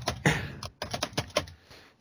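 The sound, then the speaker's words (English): Quick, uneven clatter of computer keys as someone types a Google search for "Golden Girls alive", fairly quiet, with short bursts of clicks and brief pauses between them; no voices. “You can hear me typing now.”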